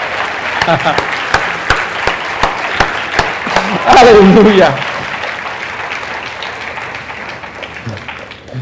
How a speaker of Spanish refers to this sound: Si le va a dar un aplauso al Señor, dáselo bueno. Amén.